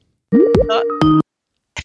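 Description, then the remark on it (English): An electronic phone ringing tone: a loud, roughly one-second burst of steady tones with quick upward pitch slides, followed after a short pause by a brief, fainter blip. No talking. It is an outgoing call that is ringing. “It's ringing.”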